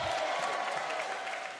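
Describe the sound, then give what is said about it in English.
An audience claps in a dense, steady wash of applause that holds at an even level through the whole moment, with faint crowd murmur underneath. “Clap like you carry that power.”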